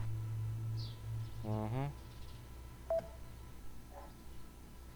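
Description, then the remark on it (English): A loud electronic interference buzz from a mobile phone fills the first two seconds with a low hum and a stuttering burst of pulses, then fades to scattered faint clicks and a brief beep. “See, you can hear the buzzing.”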